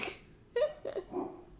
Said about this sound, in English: are these dogs talking to each other?